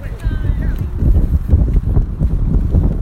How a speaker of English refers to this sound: Listen, what do you hear? Traffic.